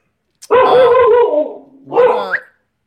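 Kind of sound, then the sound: animal, dogs barking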